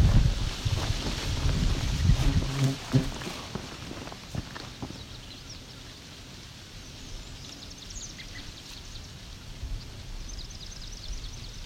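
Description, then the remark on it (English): Footsteps crunch along outdoors, loud at first, then fading, while walking past a trembling aspen whose leaves rustle steadily though it is not very windy, with a few faint bird calls. “Just walking past a trembling aspen here.”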